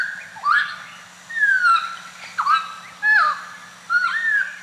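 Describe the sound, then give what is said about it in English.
A songbird, a New Guinea friarbird or hooded butcherbird, sings its morning song: five loud, clear whistled phrases that swoop up and down in pitch, spaced about a second apart, over a faint steady hum, with no one talking. “a clock of birds, and that certain birds, like the New Guinea friar bird and the hooded butcher bird, when they sing in the mornings, the children are taught to understand that that's a signal to get up and leave and, you know, get out of the house.”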